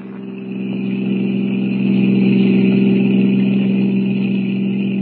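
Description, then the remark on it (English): A blue roadster's engine drones loudly and steadily as it drives at 90 on a highway at night, swelling slightly in the first moments before holding a constant humming roar with no voices. “We're doing 90. This crate sure can travel.”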